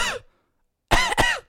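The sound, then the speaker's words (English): A voice imitates an old man's throat-clearing cough: a short rough burst, a brief pause, then a louder two-part hack, clear with no talking. “He coughs a couple of times, like he clears his throat, and it's.”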